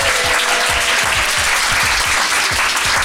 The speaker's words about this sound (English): Can we get a round of applause for the staff at Manny's, please? Manny's.